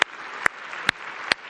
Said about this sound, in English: Well, if you agree with that, how about let's give God just a real good hand clap of praise today.